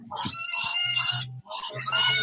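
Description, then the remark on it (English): Muscovy ducks call in a busy farmyard, a steady, overlapping chorus of raspy, honking bird sounds, briefly dropping off near the middle before picking back up. A low engine-like hum runs beneath. “Oh, the Muscovy ducks.”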